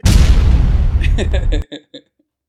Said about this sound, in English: That was a small explosion.